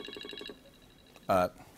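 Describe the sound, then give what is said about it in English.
A red telephone rings with a rapid warbling trill for about half a second, followed after a short pause by a single louder, brief electronic tone; the call is from Dwayne Johnson. “the red phone's ringing, sorry.”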